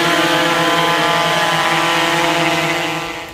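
A drone's propellers buzz loudly and steadily in flight as it delivers a kidney for transplant in the U.S., a dense, high-pitched whirring drone that holds constant before easing off slightly at the very end, with no voices.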